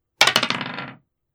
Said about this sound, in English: Ooh, this dice is rolling really well.